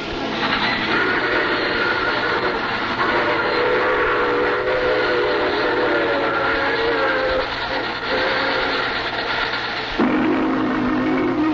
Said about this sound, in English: I take this same train every week at this time.